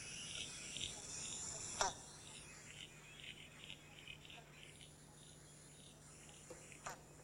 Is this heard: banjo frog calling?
yes